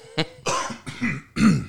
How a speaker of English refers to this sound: I'm sorry about my throat. He said to get all the coughs out before well, I start he talking, hit record.